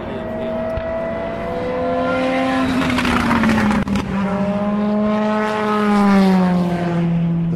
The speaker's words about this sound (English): Two Peugeot, a rebellion Toyota, and the first of the LMP2 cars. Because another LMP2 car. Number 15. The second of the two rebellions. And the number 8 Peugeot.